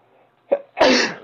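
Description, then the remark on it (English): A single loud sneeze: a short sharp inhale catch followed by a forceful, breathy burst that fades quickly, with no talking. “I can't afford all this sneezing.”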